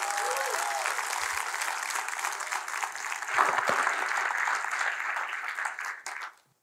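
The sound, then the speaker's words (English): A large church audience applauds steadily to welcome a guest and his wife: a dense wash of many hands clapping that holds loud for about six seconds, then tapers off quickly into near silence at the end. “I want you to be a round of applause right now for Bill Howard.”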